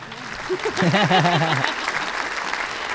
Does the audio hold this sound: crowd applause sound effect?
yes